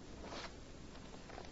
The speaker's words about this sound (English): Let me write it down on this slip of paper.